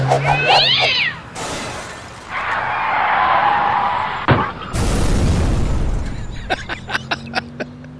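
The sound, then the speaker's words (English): A cat yowls sharply, then a loud electrical transformer explosion, caused by a car hitting a pole, erupts in a roaring, crackling burst, followed by a second blast and a string of fading pops and snaps. “It went into the back window, and the driver hit a pole, and it blew up the transformer, and that's what happened.”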